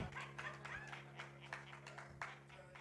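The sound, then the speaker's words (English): A few scattered, sparse claps from a crowd applauding for fathers, quiet and irregular, over a low steady hum. “I know there may be some subtle claps somewhere, but you know what?”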